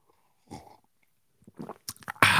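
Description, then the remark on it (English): Sipping from a cup without a lid: a short slurp, a pause, then a cluster of wet sucking sips, ending in a sudden loud breathy rush. No talking. “Oh, you guys were taking overs, unders on the sip of the day.”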